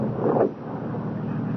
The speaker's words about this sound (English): Listen, that's a car. It's slowing down.